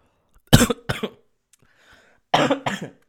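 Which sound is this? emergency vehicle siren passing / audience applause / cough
cough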